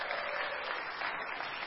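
An audience breaks into steady applause, a dense wash of many hands clapping at an even level with no voices rising above it.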